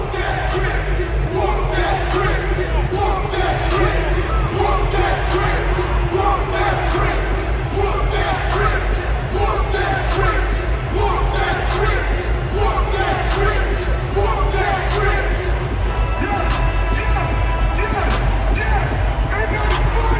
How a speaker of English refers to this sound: And so as the game was winding down, the fans in Memphis do this. They get their towels up and they sing this to opponents.